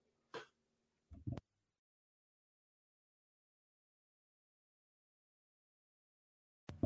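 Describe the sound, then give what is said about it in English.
A sharp throat clearing followed quickly by a short rough cough, then several seconds of silence before another burst of harsh coughing at the end. “This cough is obviously choosing to show up at the worst possible time.”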